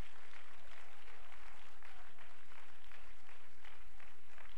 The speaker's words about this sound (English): Come on, clap your hands and let's give praise to the Lord, Landmark.